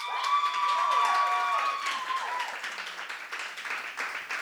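An audience votes by applause for a favorite, the Airwolf pick, bursting into applause with cheers and whoops layered over the dense clapping, high excited voices ringing out early before the sustained clapping carries on steadily to the end.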